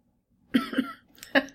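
A person coughs in a short, sputtering burst of three harsh coughs, fairly loud, after sucking some spit down the wrong way.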